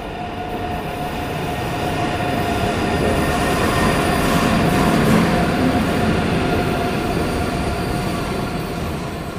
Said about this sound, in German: Ja, und da sitzen wir auch schon wieder im Zug zurück nach Hause nach 3 Stunden Gamescom.